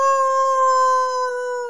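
A wolf howls in one long, steady note that holds its pitch and sags only slightly at the end. It is loud, with no voices over it.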